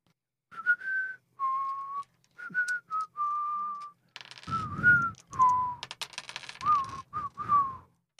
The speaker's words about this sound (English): Very bad whistling on my part, I apologize.